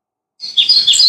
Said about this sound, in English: Oh, man. Just hear the birds.